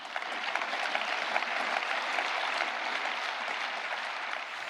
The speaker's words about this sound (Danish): Ja, der var flere runder af stående klapsalver til Monsieur le Président de la République, den franske præsident Emmanuel Macron, da han i tirsdags holdt tale til Europaparlamentet for første gang.